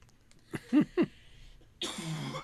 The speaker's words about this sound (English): Excuse me. Still coughing. It's only been 8 months.